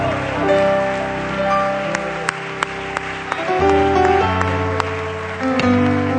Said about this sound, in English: Come on, somebody, clap your hands to the Lord and thank Him. Give Him a shout with a joyful noise. I thank You, Lord.